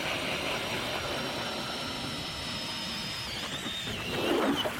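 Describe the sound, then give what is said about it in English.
A powered ice auger drills steadily through ice for ice fishing in Vermont's Northeast Kingdom, its engine holding a constant mid-pitched drone with a high whine, surging and grinding harder near the end as the bit breaks through. No one speaks. “We'll just drill through the ice here.”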